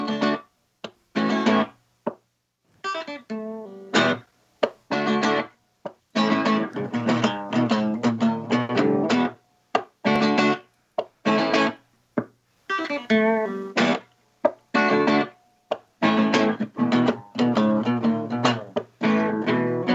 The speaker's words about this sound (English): Yeah, I like playing my Les Paul.